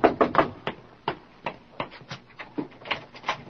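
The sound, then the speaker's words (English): A rapid, uneven series of sharp knocks, about a dozen in under four seconds, fairly loud with no voices: someone knocking on a door. “And then there was no time to return the documents to the safe, no time for anything but to find out who was at the door.”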